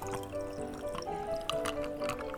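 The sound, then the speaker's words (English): Whiskey pours steadily into a glass at Harper's Saloon, a gurgling stream whose tone rises as the glass fills, with a few small splashes and no voices. “Pour me whatever the hell you like, so long as it burns on the way down.”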